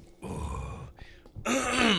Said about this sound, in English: Hold on. I clear my throat again.